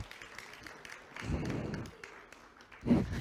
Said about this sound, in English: Give Andrew a clap for being so brave.